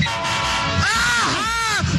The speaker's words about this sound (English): Every time the train honks the horn.